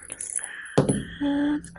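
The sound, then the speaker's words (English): A sharp rattling clatter of dice shaken inside a small metal cage during a tabletop role-playing game, followed by a brief, steady bell-like ring as the inside of the cage jingles, with no talking. “What dice are you rolling? It sounds like a bell.”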